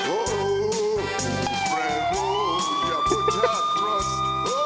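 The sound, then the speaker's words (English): An emergency vehicle siren wails steadily, its pitch slowly sweeping up, mixed loudly over music with a pulsing, rhythmic bass beat. “I wish the siren wasn't on it.”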